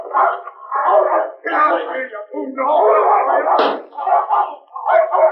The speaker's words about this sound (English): That dog was aiming to bite me. Yo, and her aim was good, too. I think she got some of your pants, by golly.